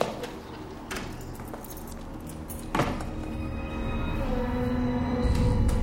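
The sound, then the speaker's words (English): Keys jangle as they are handed over, a few brief metallic clinks with one sharper rattle standing out midway, over a steady low rumbling background with no one speaking. “Give me back those keys. You can't have those.”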